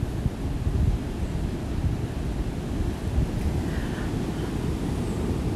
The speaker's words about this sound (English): I don't know if you can hear like just the breeze. That's the water. Waves crashing and the breeze flowing through the palm leaves.